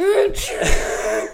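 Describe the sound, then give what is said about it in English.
A person vocally imitates a dinosaur sneezing on a girl: a rising, moaning inhale breaking into a loud, breathy burst, lasting just over a second. “Dinosaur sneeze.”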